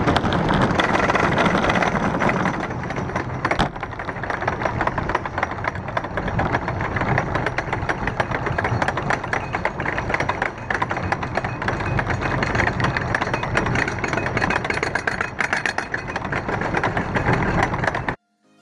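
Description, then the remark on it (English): A roller coaster chain lift hauling a train up the lift hill: a steady, loud mechanical clatter with rapid, evenly spaced clicks of the pin hitting the metal plates, running for the whole stretch, then cutting off abruptly. No voices. “Just hearing that click of the pin hitting off the metal plates and the chain pulling you up.”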